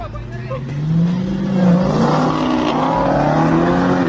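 A car engine revs steadily, its pitch climbing and holding in a loud, continuous whine for several seconds, dominating the scene, in a clip joked to show Kyler Murray leaving State Farm Stadium in a clown car.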